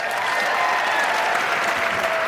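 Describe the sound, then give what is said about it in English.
A crowd claps and cheers steadily for Maeve Higgins tying for the lead in a quiz game, a dense, continuous wash of applause with a few brighter whoops riding on top, sustained at an even loudness throughout the couple of seconds. “Broadway is cheering right now.”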